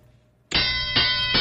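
A bell is struck three times in quick succession, each loud metallic clang ringing on with bright, sustained overtones. The strikes come after a brief quiet moment, with no voices.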